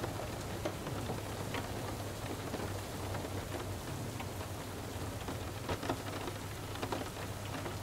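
Steady rain falls continuously, a dense hiss of drops with scattered sharper patters on a surface, and a low rumbling hum underneath. No voices, just the rain throughout.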